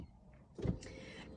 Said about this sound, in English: I pressed a button on my car and then my steering wheel starts moving and my seat starts going and I should just stop fidgeting.